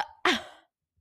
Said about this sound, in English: I'm yawning into this microphone.